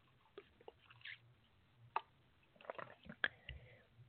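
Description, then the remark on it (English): Someone takes a few quiet sips of water: soft wet slurps, small mouth clicks and a swallow, scattered irregularly with no talking. “So let me just have some water here.”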